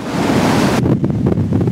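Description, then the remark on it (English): Storm waves, driven by a windstorm combined with a king tide, crash loudly onto the shoreline, piers and seawalls from Stanley Park to West Vancouver in the morning, in a continuous roaring wash, with strong wind buffeting the microphone. The surge thins briefly partway through before rumbling on. “In the morning, waves crashed onto shoreline, piers, seawalls, from Stanley Park to West Vancouver.”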